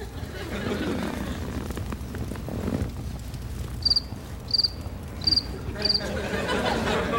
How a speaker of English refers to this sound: Just crickets, right? That's right.